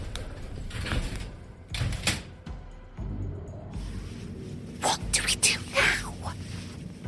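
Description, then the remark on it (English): An elevator door slides shut over a low mechanical rumble as the elevator descends, with a couple of brief scraping swishes along the way and soft whispery voices faintly in the background. “We hadn't taken more than five paces before the door to the elevator slid shut and descended, leaving us in total darkness.”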